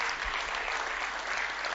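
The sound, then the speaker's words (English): A church audience claps for the standing members from Kasua East in a steady, dense wash of applause that holds at an even level throughout the short stretch, with no voices standing out. “Oh, those who are sitting, you can clap for them.”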